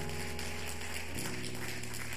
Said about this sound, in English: Let's get that hand clap of praise.